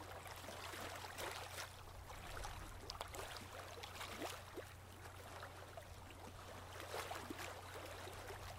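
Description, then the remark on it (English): Gentle ocean waves wash softly onto a beach, a continuous quiet hiss broken by small irregular splashes, with a steady low rumble underneath and no voices. “And as you allow the sound of the waves to relax you, you continue to look out over the water as you relax on the beach.”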